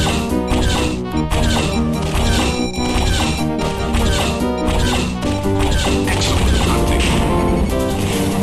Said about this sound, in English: Authentic sounds of a cat being hit with a hammer. God, I love when they run out of sound channels and you can hear one sound cutting off while another plays.